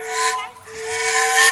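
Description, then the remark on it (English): The whistle of the Disneyland Railroad steam train blows one long, sustained blast, a steady tone layered with breathy, hissing steam, with a brief dip in the middle before it swells again. “Yeah, you were right. It was the Railroad.”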